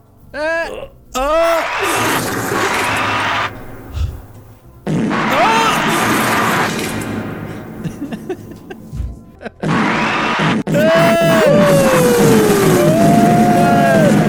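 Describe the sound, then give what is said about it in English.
A series of loud, buzzy, sputtering farting sounds played like a performance, coming in several long bursts with pitch that swoops up and down, separated by brief pauses. “I was told there would be like a musical performance when I came in, and that was a lot of farting sounds.”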